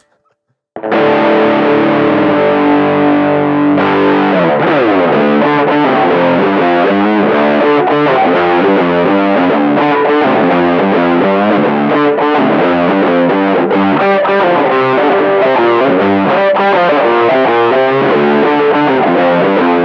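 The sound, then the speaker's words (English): Chunky, heavily distorted rock guitar riffs kick in after a brief silence, starting with a sustained chord before launching into driving, rhythmic riffing that stays loud and dense throughout, with no voices. “But I want to celebrate this underdog of a band by bringing some of their fat riffs into here.”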